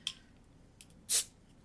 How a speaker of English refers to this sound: And I'm gonna pop this top.